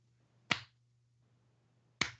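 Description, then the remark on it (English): Two sharp, crisp hand claps about a second and a half apart, each a quick bright crack that fades fast, over a faint steady low hum with no talking. “Do you want me to clap or do you want me to?”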